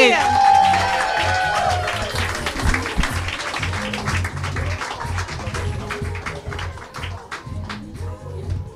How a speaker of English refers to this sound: Start clapping right now. Louder. Give it up